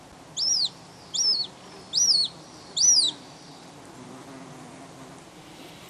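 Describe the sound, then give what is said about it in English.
A hen harrier calls four times in a steady series, each note a loud, clear, rising-then-falling whistle, over faint outdoor background noise that continues after the calls stop; a field recording made by Sean Renane of Irish Wildlife Sounds. “Now, myself and John didn't spot a hen harrier on Wednesday, so the recordings that you heard there were made by Sean Renane of Irish Wildlife Sounds fame.”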